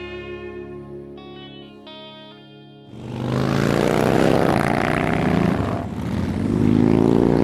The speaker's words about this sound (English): You heard the motorcycle club before you saw it. It was this roar of engines just igniting the street.